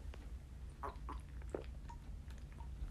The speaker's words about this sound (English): I'm actually going to take a sip of water real fast because my mouth is getting dry from all this talking.